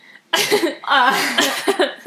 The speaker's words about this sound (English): God bless. That was a cough. I know.